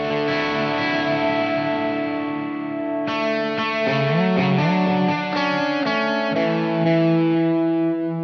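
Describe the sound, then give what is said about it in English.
Overdriven electric guitar, a non-standard Telecaster through a Laney L20H amp, played through a Plexi Echo analog echo plugin with its analog switch on: a sustained chord rings out, then a fresh strum leads into a short melodic phrase with bends, repeats trailing behind, loud. “So should we try it on a little bit of guitar? Yeah, can do. All right, let's do it. If we go with go and get this Plexi Echo and flick the analog switch on.”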